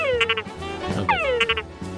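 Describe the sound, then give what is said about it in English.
A frog calls twice, each call a falling, whistle-like sweep followed by quick clicking pulses over a steady low throb. The sound is fairly loud, with no talking. “A bottle of frog.”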